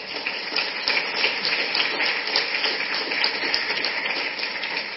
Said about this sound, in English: A round of applause